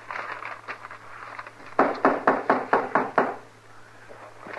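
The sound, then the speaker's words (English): Six firm, evenly spaced knocks on a wooden door ring out, preceded by a few faint taps and followed by quiet room tone; no one speaks. “Like a body could open the door for theirself.”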